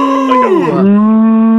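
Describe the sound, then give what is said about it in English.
A person imitates a cow with one loud, drawn-out moo. The pitch dips in the middle and then holds steady as a low, sustained tone. “Is it like congratulations, or it gives a hearty moo?”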